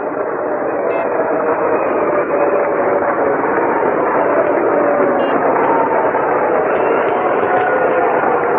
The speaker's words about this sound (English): And listen to the crowd with Pepe coming up.